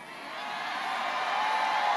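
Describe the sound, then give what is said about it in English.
A large rally crowd roars steadily in a dense wash of cheering, whooping and shouting, swelling slightly louder over two seconds, with no single voice standing out. “I didn't hear anything except our crowd.”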